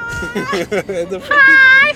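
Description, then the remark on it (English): A voice does a high, squawky cartoon-bird cry imitating the little red bird from the game Angry Birds: a few choppy chirping bursts, then one long, strained, piercing wail held at the end. “Tell me that was not a good-ass impersonation of the little red bird from Angry Birds.”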